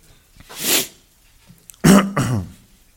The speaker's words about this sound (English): By the way, forgive me today. You may hear me clear my throat a lot today. I've been, it's been a rough few weeks.